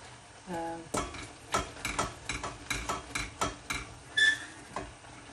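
A spoon continuously stirs a thick, bubbling, boiling mixture of halved, stoned cherries in a pot so it doesn't stick, making a quick series of scraping clacks against the sides. A brief tonal hum sounds near the start.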